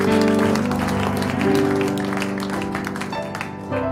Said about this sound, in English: Come on, give him a hand clap of praise this morning. Hallelujah.